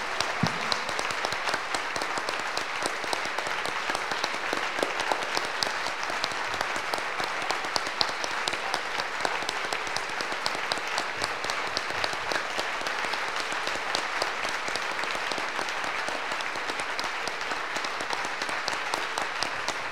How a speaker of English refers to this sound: Donc une manière de lui dire, c'est d'acclamer, acclamer, acclamer, acclamer. One of the ways to try expressing it is by clapping for him.